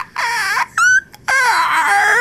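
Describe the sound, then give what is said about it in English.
A voice imitates a baby velociraptor screech: three loud, high, wavering squeals, a warbling cry, a short sharp chirp, then a longer quivering wail, with no talking. “Yeah, it's like a velociraptor being born.”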